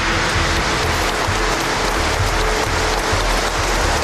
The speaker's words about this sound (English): Former Italian Prime Minister Silvio Berlusconi is being honoured with a state funeral in Milan. Thousands of mourners have gathered outside the city's cathedral and burst into applause as the 86-year-old's coffin was carried inside.